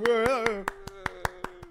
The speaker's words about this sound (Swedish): Ja, så applåd till podcastgruppen.